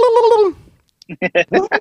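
turkey gobbling

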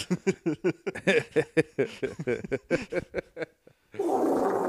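wet fart sound effect

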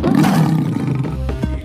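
roar

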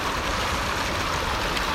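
river water flowing

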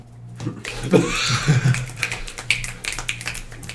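finger snapping as applause

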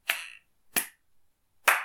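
three hand claps

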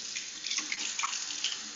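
tap water running

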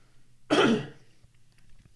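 cough

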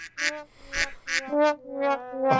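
duck quack sound effect

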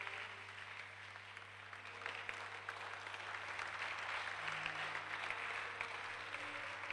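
audience clapping

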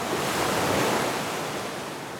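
sea waves

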